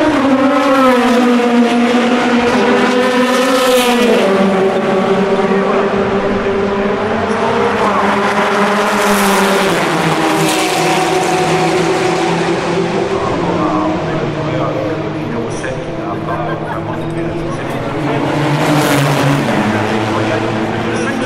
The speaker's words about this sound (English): That last one was one of the GTR Nissans, very muted, not as raspy as they were earlier on. I wonder if they've turned them down.